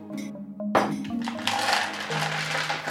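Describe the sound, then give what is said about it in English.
Several dice tumble and clatter across a hard surface, starting with a sharp burst and rattling continuously for a couple of seconds, fairly loud. “Get that good dice audio.”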